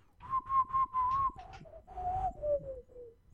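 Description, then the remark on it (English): A man whistles a short tune in an office, a run of quick repeated notes at one pitch and then a few longer notes sliding gradually lower, clear, with no talking. “Yeah, the other day I was just sitting in my office and my coworker started whistling, and the tune that he whistled was.”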